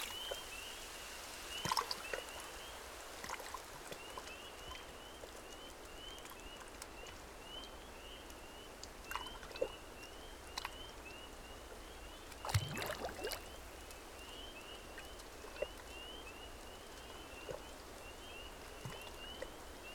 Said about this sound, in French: La grenouille, elle chante pour attirer les femelles. Elle chante aussi pour marquer donc son territoire.